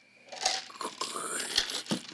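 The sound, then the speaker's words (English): A big dry fall leaf crunches underfoot as a foot steps over it, a brittle crackling that runs about two seconds with a few sharper snaps along the way, fairly quiet and with no voices. “So you quiet yourself, take a pause, and you put your foot over the leaf, and then you go...”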